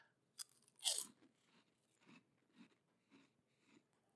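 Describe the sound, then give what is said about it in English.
Crunchy chewing picked up by the microphone: a sharp initial bite followed by a steady rhythm of softer munching crunches, about six more, with no talking. “Every time I take a chew, I can see it in my little meter here that my chewing can be heard in the microphone, which made me uncomfortable enough to throw this box across the way.”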